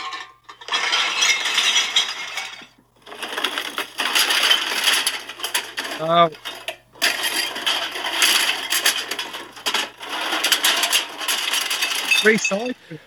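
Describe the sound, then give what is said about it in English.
Glass bottles and cans clatter and clink in long rattling bursts, with a couple of bright ringing chimes where glass strikes, as recycling is tipped and shaken. “Recycling. Of course it is. Hey, that sound.”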